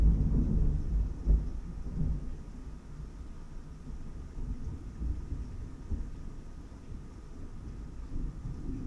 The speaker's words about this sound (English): There was a big thing of lightning, and I feel like thunder is about to hit.